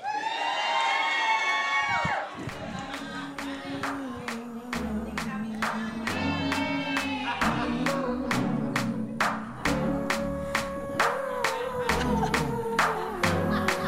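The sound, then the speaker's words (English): An audience at a live show cheers and whoops loudly for a guest for a couple of seconds, then keeps cheering while sharp, evenly spaced claps beat out a steady rhythm over low sustained tones. “Give it up for our guest,”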